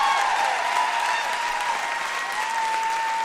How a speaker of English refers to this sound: Just gonna air out that applause. That's good stuff.